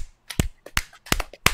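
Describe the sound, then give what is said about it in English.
Loud, sharp hand claps right up against the microphone, about four strong smacks with softer ones between them in an uneven rhythm, with no voices. “Everyone clap, but do it really close to the mic so it hurts everyone's ears.”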